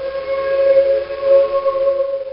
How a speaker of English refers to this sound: Yet there isn't a train goes by all day, but I hear its whistle shrieking.